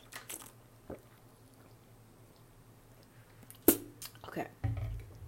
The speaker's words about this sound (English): Oh my god, I need to drink some more.